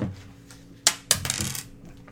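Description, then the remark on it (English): A small four-sided die is rolled onto a hard table during a game: two sharp clicks, then a quick burst of rattling taps that fades as it settles. Fairly loud, with no voices. “So I'm gonna roll the first die.”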